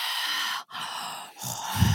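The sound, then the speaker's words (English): A voice imitates Darth Vader's heavy respirator breathing: long, hissing breaths drawn in and pushed out, separated by brief pauses, with a low rasp at the end and no talking. “Darth Vader breathing.”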